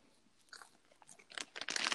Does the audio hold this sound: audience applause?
no